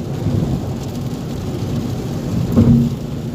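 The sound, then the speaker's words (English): Steady rain patters and hisses continuously during a car drive, with a low rumble underneath and a brief swell of heavier rain or thunder near the end; no voices. “25-minute drive in the rain.”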